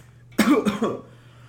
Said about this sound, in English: Let me just cough to death for a little bit.